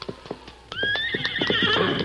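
A few sharp hoof clops ring out, then a horse lets loose a loud, shrill, wavering whinny that carries to the end while the hooves keep clopping beneath it.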